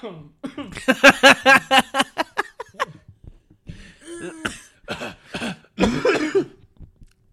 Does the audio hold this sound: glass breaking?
no